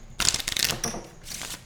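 Playing cards riffle-shuffled: a crisp, fluttering burst of rapid card flicks, a brief pause, then a second shorter riffle, with no talking.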